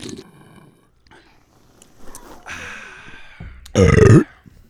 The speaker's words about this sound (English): I don't know if we can top that. No. That burp.